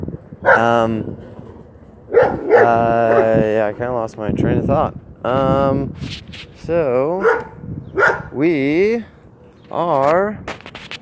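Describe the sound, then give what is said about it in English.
A small German Shepherd running around at the grandparents' home being visited barks and yips in scattered high-pitched bursts, some rising and falling like whines, while a person talks intermittently between and over the barks. “They have like apparently there's a little dog running around.”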